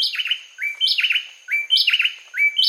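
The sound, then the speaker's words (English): A pair of bay wrens, hidden in the underbrush, trade rapid whistled phrases in a brisk, repeating duet just before sunrise on a winter morning in Costa Rica, their bright notes looping back and forth in a steady rhythm, loud with no other sounds. “On a winter morning in Costa Rica, a pair of bay wrens sings a brisk duet just before sunrise.”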